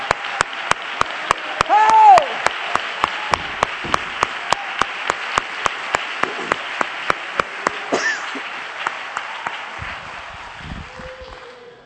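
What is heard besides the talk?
audience applause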